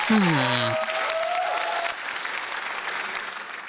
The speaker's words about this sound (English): Audience, how about a big round of applause? Gen Z.